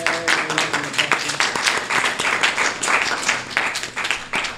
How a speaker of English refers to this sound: Preemptive applause, I love it.